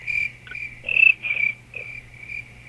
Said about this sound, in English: Do your cricket sounds.